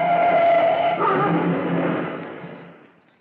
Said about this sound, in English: Yes, I understand you want to know why ladder 102 crashed into the Staples building this afternoon.